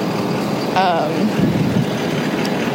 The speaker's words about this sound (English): Sorry, this car's trying to turn. By car, I mean ambulance.